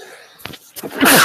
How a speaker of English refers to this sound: was a sneeze. Gesundheit.